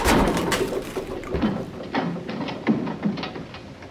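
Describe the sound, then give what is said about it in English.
A door being broken down: a rapid run of sharp cracks, thuds and splintering clatter, fairly loud, with no one speaking. “Now stand back while I break down this door.”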